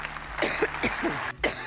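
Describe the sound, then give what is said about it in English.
A run of dry, throaty coughs from former Prime Minister Theresa May comes in quick succession, several short rasping bursts with a brief pause before a final one, with no speech. “And starting off at number 10, it's former Prime Minister Theresa May coughing.”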